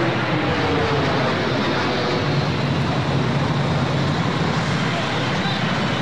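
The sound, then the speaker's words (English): A loud, continuous roar of an airplane flying overhead in a video, its dense rumbling wash filling the entire stretch at a steady, overpowering level. “You don't hear planes too often, especially loud ones.”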